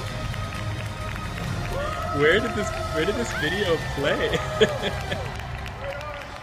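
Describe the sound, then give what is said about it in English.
Scattered clapping from a crowd in a video being played runs steadily in the background, with a person talking over it in the foreground. “Oh, they all clap.”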